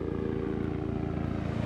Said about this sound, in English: We walked to the end of this wide shelly beach, and I've just given up hope, when all of a sudden, a helicopter flies overhead.